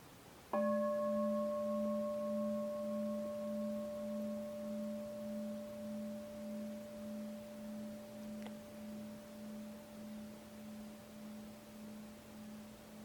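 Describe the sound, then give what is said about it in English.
A single meditation bell is struck once, then rings with a low, wavering hum and bright overtones that slowly fade over about twelve seconds, with no voices. “Try to hear the bell, to have the hearing consciousness, hear the bell before it actually rings, and after it will have rung.”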